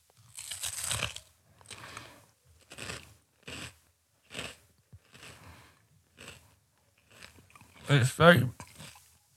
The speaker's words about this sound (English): So now you're eating brunost. Brunost. On the breaking bread, knäckebrød. That's very Norwegian. Brunost, right. Get ready for the crunch.